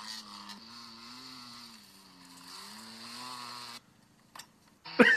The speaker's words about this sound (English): Just the sound of a happy Twingo.